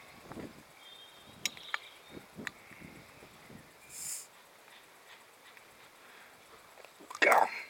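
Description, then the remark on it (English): A tight cap being twisted off a brown bottle of American Pale Ale beer: a few faint scattered clicks and creaks, a brief soft hiss, then a sudden louder crackling burst near the end as it gives. “Wow, that was on tight.”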